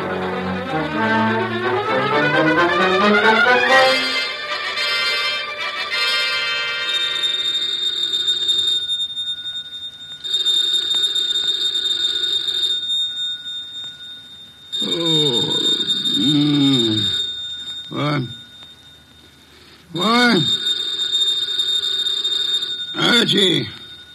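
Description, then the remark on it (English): A telephone bell rings in repeated bursts of a few seconds each, loud, after a brief musical flourish. Voices speak briefly between and over the later rings. “The phone.”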